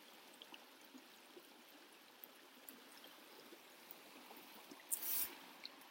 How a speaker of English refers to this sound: I'm going to pop the laptop on a snowy log and hopefully you can hear me over the water and the bellbirds.